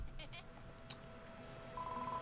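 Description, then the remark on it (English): A bell rings at Fairfield Farm: a few quick, bright high-pitched dings, then a steady sustained ringing tone near the end, fairly soft over a low background hum. “It looks like the sound of the bell has brought some more budding builders.”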